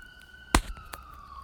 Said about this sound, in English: And I'm hoping that these sirens are left in because it underscores my point.